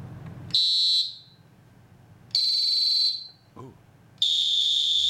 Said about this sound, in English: The Fox 40E whistle. When safety, security, and hygiene are a concern, use the Fox 40E whistle. Three distinct tones.